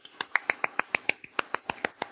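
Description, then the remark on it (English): Small, quick clapping from the other cell: roughly a dozen sharp, crisp claps in a steady, brisk rhythm, fairly light in volume, with no voices. “There's a small clapping from the other cell.”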